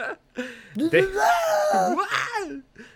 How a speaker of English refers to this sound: One soldier is crushed under debris, and we get our fourth Wilhelm scream from it.